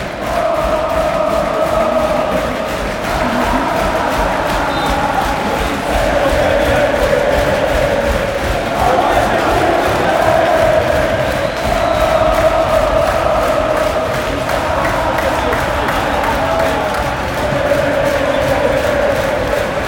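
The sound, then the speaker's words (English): A big football stadium crowd roars and chants steadily for the whole stretch, loud and sustained, with swelling waves of voices rising and falling in rhythmic surges. Thiago Araújo is getting the crowd up for the last minutes of a 1-1 game involving Estoril. “Thiago Araújo is getting the crowd up for the last 3 minutes of the game.”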